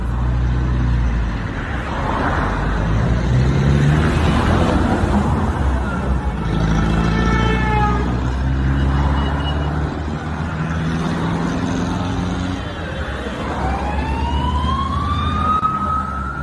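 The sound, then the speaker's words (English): A car engine rumbles steadily and pulls away, its low drone joined by rising, whining tones near the end, with muffled voices faintly underneath. “Car goes.”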